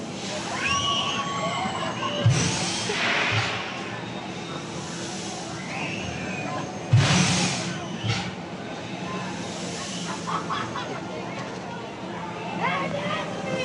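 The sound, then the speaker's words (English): Riders on the Liberty Launch amusement park ride scream in scattered, high-pitched bursts over a busy background of crowd murmur, with two loud rushing surges as the ride launches and swoops. “And so I've recorded that in a 17-second clip, and let's see if you can identify any of the screams.”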